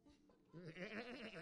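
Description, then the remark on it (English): A person imitates a goat with a single loud, wavering bleat that starts after a brief lead-in and trembles steadily for about a second. “So anyway, there's only one proper way to do a goat noise.”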